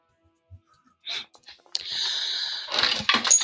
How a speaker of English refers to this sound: Oh, I think I dropped some dice, though.